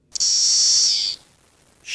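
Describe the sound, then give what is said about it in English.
A voice imitates the white-noise call of the periodical cicada Magicicada cassini with a loud, steady, high hiss lasting about a second, followed by a brief gap and a second hiss starting. “Magicicada cassini makes the white noise sound.”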